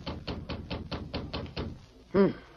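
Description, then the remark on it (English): A quick run of about eight evenly spaced, fairly loud knocks on the door of a ranch house, followed after a short pause by a brief voiced sound. “She was interrupted by a knock at the door.”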